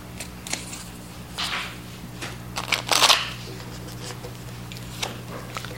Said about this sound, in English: I've been doing a lot of online readings every Tuesday night on Facebook, and I guess I'm just used to shuffling the cards for strangers right now.